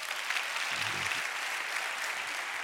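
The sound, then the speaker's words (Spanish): An audience applauds for Christ in a dense, steady wash of clapping that fills the whole stretch without pause, with a faint low murmur of voices briefly underneath. “Dale un aplauso, Cristo.”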